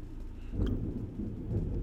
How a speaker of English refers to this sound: I don't know if you just heard that thunder. Beautiful. Thank you for making a guest appearance thunder.